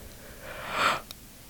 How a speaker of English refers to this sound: Ooh, look at that yawn to start us off.